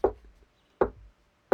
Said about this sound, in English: That's us knocking, your mother and me.